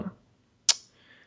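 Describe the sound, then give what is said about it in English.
A single crisp computer mouse click, fairly sharp, sounds once in an otherwise quiet moment after a faint soft tap at the start, as someone clicks through to a list of Olympic host cities. “I'm sorry, I'm clicking through to”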